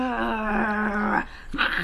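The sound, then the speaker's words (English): A human voice imitates a dog's soft, low growl: one steady rumbling tone lasting about a second, followed by a brief breathy vocal sound, moderately quiet. “Silver Dog growled softly.”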